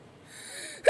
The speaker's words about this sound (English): Woo! Excuse me. Felt that sneeze coming up from a distance. But we all good.